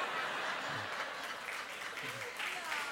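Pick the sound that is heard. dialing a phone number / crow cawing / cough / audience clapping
audience clapping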